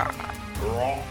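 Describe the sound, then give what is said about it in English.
A person makes a short, low, throaty croaking noise with their voice, imitating a frog. It is a single brief, raspy vocal sound. “I feel like it'd be more like a croak.”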